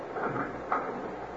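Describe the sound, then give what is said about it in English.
A car door opens with a soft click and clunk partway through, fairly quiet against a steady low hum of background noise. No one speaks. “All right, now close your door.”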